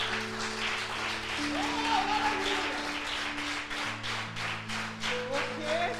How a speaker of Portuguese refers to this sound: Aplausos, Senhor Jesus.